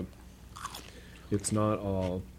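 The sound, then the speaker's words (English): A crisp bite and crunch into a firm, green, crunchy pickle, a couple of sharp crackly bursts, followed by a voiced murmur of approval while chewing. “It's like super green, and they're not soggy, and they're crunchy.”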